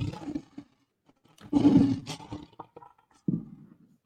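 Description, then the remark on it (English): A lion roar sound effect, played as the Lions roar for feature player of the week Aleem McNeil, comes in several loud, rumbling bursts: a deep growl at the start, a long swelling roar in the middle, and a final shorter grunt after a brief pause. “Let's give Aleem that good old Lions roar, and this is not a toilet bowl.”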